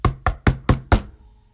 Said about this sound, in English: And I heard a knock.